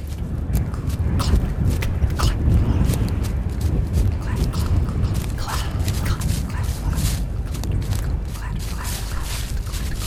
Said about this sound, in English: Another voice, then, the beast from his dreams, seemed to speak through the snapping of branches and crunching of stiff leaves beneath the farmer's boots.